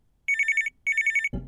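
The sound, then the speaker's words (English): A telephone rings twice, each ring a bright, high-pitched burst of rapid trilling pulses separated by a short gap, followed by a brief dull clunk at the end. No one speaks. “If you want to hear what happens when Mariela answers the phone, listen to episode 33, Lack of Legroom.”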